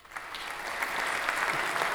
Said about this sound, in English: Round of applause for me and you.